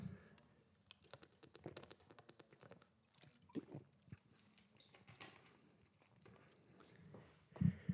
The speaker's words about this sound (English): Excuse me, I'm taking a liquid sip. I need to get more hydrated before these shows.